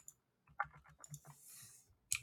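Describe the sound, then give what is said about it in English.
Someone types a card-game rules lookup on a computer keyboard, a quick irregular run of soft key clicks, with a brief hiss and a sharper tap at the end and no voices. “I'm typing it in.”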